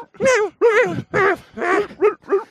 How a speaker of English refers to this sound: Incredibly irritating dog barking over there.